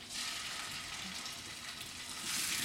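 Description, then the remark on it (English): Tuna searing in a hot pan gives a steady sizzling hiss with fine crackle throughout, swelling slightly louder near the end; no one speaks. “And then it's always best to kind of, as you put something in the pan, you kind of put it so it's folding away from you, so it splashes that way and not towards you.”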